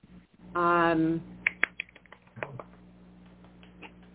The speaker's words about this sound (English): okay, are you clapping? I did a little clap.